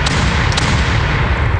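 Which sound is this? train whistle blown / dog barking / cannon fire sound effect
cannon fire sound effect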